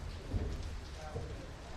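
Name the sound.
rain falling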